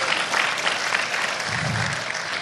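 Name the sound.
audience applause and cheering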